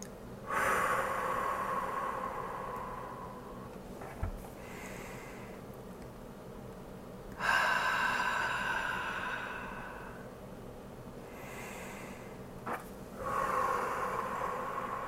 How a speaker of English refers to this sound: I encourage you to relax your body and take a couple nice deep breaths here, ideally in through the nose and out through the mouth.